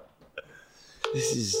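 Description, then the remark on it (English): Two brief, faint touch-tone beeps as a phone dials Domino's for a prank call, then a louder, steady burst of layered electronic tone with a slightly wavering pitch that runs to the end. “I'm going to call Domino's and hum as they talk and pretend like it's their fault.”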